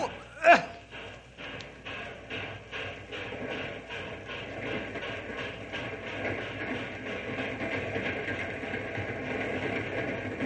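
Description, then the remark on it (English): A train rumbles along the rails with a steady, rhythmic clatter, preceded by a single sharp metallic clank near the start; the noise stays fairly loud throughout. “If we miss the caboose, we'll have to wait for the next train or walk.”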